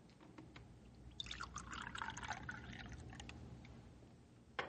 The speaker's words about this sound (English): Here, I pour you one more cup of coffee